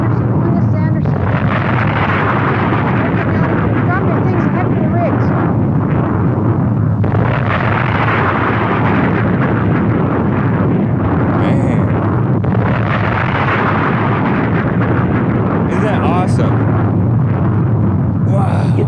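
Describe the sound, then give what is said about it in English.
A volcanic eruption on the morning of May 18, 1980 roars without pause as ash, rock and ice are blasted into the stratosphere, a loud, heavy low rumble filled with crackling, churning noise and repeated explosive bursts that swell and surge over the whole stretch. “A cubic mile, tons of ash, rock, and ice were rocketed into the stratosphere.”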